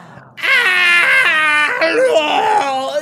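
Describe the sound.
A voice imitates the creature DeBonesby wailing from inside a truck, a loud, sustained, wavering high-pitched howl that dips and rises in pitch for about two and a half seconds, with no other talk.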